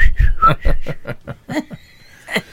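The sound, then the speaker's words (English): A person whistles briefly, a thin high tone mixed with breathy, rhythmic bursts that sound like stifled chuckling, ending with a faint, high sustained whistle. “Look at the lines on the screen when I just whistled.”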